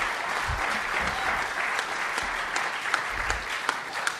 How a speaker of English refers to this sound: Hey, let's clap it up for Soma Church and Day Spa. These people are unbelievable.